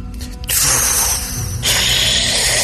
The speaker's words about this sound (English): You unlock the door.